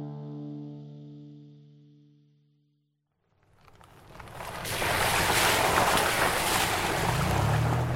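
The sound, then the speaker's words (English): A boat motors over ocean waves, a loud, steady rush of engine and splashing water with wind buffeting the microphone, after a low sustained tone fades out into brief silence. “I'm off the boat and on Santa Cruz Island, the largest of California's Channel Islands.”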